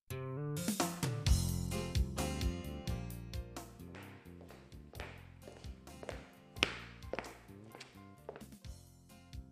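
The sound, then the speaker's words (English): Steady footsteps walk along a hard floor, each step a crisp tap in an even rhythm, with no one speaking. “I hear someone walking.”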